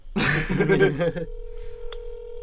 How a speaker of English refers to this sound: The phone is ringing.